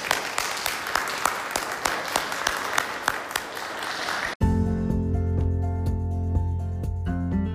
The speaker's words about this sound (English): So can we just give Joe a massive round of applause?